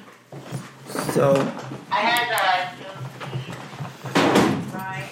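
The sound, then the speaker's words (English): A chair is shifted: a few dull bumps and shuffles, then a drawn-out wavering squeak or scrape near the middle, followed by more knocking as it settles. “Sorry, I was just moving my chair.”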